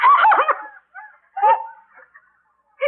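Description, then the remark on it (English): A dog with a white patch on its face runs up to someone, giving a loud, strained bark followed by a few shorter yelps and whines, with brief pauses between bursts and a final sharp yip. “That dog is running right up to...”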